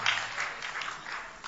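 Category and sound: crowd, audience clapping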